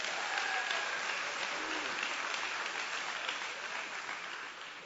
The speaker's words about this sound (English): Y'all give my two people a big hand clap.